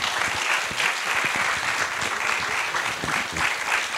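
A large audience in a theater claps steadily for four guests, a dense, continuous wash of applause that stays loud and even throughout with no voices standing out.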